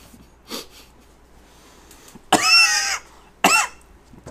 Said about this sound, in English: See, I'm the one who's supposed to be doing that, right? I'm supposed to cough and scare everybody away.